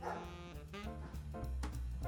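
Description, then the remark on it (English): A dog barks several times in quick succession at night in a parking lot in Santa Monica, loud, the short harmonic yelps standing out over a steady, dense low background sound. “commiserating with an old friend who happens to be, you guessed it, a dog.”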